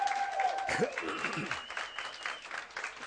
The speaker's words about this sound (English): So guys, thank you for doing this awesome job. Just turn around and just clap for them. Just give them some of your love, some of your appreciation.